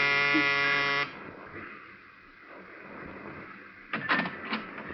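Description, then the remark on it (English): A loud electric door buzzer of a ground-floor apartment in a narrow gray row house is pushed, sounding in one steady, harsh burst lasting about a second, then cuts off into quiet room noise, with a few brief clicks or clatters near the end. “I smelled domestic trouble, but I pushed the buzzer anyway.”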